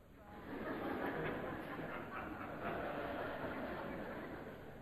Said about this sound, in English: And a train pulls into the station. And Paul coming out of the door as the train stops.